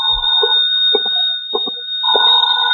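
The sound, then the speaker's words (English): A telephone rings in short, repeated bursts about every half second, a bright, buzzing ring over a steady high-pitched whine, with no one speaking. “Then I packed a bag, was about to take off, and the phone rang again.”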